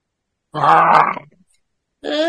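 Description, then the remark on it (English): A voice imitates a grunt with a rough, throaty burst lasting under a second, then after a short pause a second, more tonal vocal sound starts and is cut off. “It makes, yeah, the, you know, humming sounds and stuff like that. Yeah. Grunt.”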